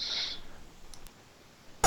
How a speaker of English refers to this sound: Sorry, had to cough real quick there.